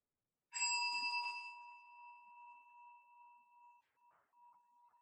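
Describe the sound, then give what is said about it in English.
A single bell is struck once, a bright metallic ring with clear harmonic tones that sustains and slowly fades, heard alone with no voices. “Can you differentiate between the sounds of the bell versus the hearing capacity?”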